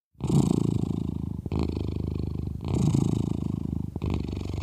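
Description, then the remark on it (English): A domestic cat purrs steadily, a low rumbling vibration that swells and dips with each breath, about four cycles with brief pauses between inhales and exhales. “Here's the cat purr.”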